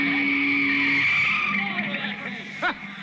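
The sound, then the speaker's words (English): A car's tires squeal loudly in a sustained skid on a field, the screech wavering as the vehicle slides to a stop, with a short sharp squeal near the end. “Get that car out of here, will you? Get off the field”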